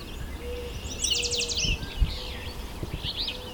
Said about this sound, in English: So the rose-breasted grosbeak squeaking.